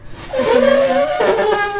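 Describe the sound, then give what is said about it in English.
A voice imitates an elephant's trumpet: a loud, brassy, nasal wail lasting under two seconds that slides in pitch, dips briefly and swells again, with no talking. “Welcome to At Larn Adventure Company, where we just make elephant noises for 2 hours.”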